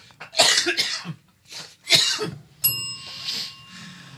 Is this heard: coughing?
yes